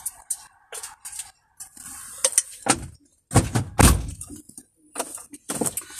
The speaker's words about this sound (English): I don't know why they be so timid with that damn door. Just close it a little harder. You ain't gonna break the door.